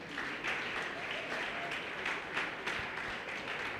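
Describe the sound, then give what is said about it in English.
A crowd claps for Jesus steadily, a dense wash of overlapping hand claps with faint rhythmic pulses, holding at an even, moderate loudness throughout with no clear voices standing out. “Let's clap a hand for Jesus.”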